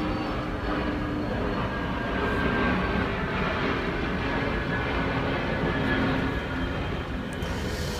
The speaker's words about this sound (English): just 1 second, airplane. Do you want to see the airplane, guys? I don't know if you can see it. No, can't see it. Oh well. We can hear it, can't we?